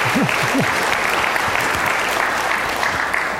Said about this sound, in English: So I want to thank all of you and thank UCSD. So here, it's true, we could clap at that. Thank you, UCSD.